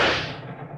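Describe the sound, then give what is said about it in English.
A single sharp shot from a little .32 automatic pistol, fired aboard a moving train: a sudden loud crack that fades quickly into a low, rumbling tail, with no voices. “Open your purse and take out the little .32 automatic you hoped you wouldn't need.”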